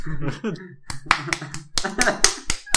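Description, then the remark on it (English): A run of sharp, fleshy slapping hits, about eight in quick irregular succession, loud and crisp, layered over a voice singing or talking underneath: a comedic Foley sound effect of Michael Caine's penis slapping on his stomach. “That's Michael Caine's penis slapping on his stomach. And then the genie comes out. That's some Foley artistry.”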